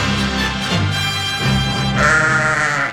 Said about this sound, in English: Oh, it's our morning sheep.